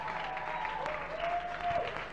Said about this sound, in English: So put your hands together and help me welcome our pastor, our mother, our shepherd